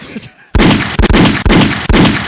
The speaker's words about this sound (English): Let me get a gunshot going.